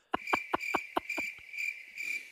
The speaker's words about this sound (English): Crickets.